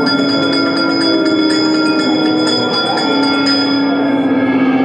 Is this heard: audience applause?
no